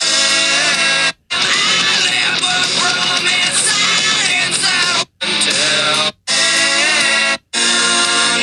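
Loud, dense rock music with shouted, screaming vocals plays from a phone in several bursts, cut by brief silences as if someone is skipping around in the track.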